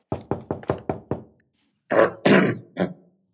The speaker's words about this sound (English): The officer sits at his desk, meticulously reviewing paperwork, when there is a knock on his door.